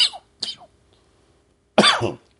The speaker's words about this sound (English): I apologize for all these coughs.